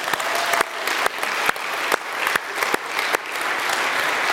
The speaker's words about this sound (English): Let's give applause to these folks.